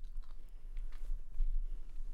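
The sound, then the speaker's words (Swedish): Quiet chewing on candy, with soft wet smacks and small clicks of the mouth coming in an irregular rhythm over a low background hum, with no talking. “Nu såg jag en godis, så nu måste jag vara tyst en stund.”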